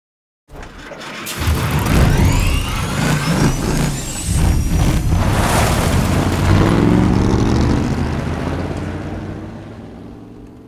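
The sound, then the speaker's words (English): A loud, layered mechanical rumble starts abruptly and sustains, with a rising motor whine and hissing, air-brake-like bursts over a heavy low engine drone, no voices: a car engine startup and whine, layered with sewing-machine-type spin-ups and recorded at the belt of a motor sticking out through the hood. “So there were other things to help sell that whine and startup that weren't just car motor things.”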